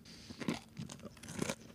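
Crunching of someone chewing a hard, crunchy Nature Valley granola bar, with several irregular bites and grinding crunches in quick succession. It is fairly quiet, and no one speaks.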